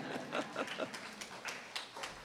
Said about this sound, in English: We can applaud for each of the readers.